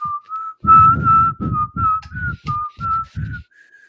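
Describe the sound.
Someone whistles Hail to the Victors, the Michigan fight song, a lively, bouncy melody with notes stepping up and down in a march-like rhythm, with muffled low thumps pulsing along beneath. No one speaks.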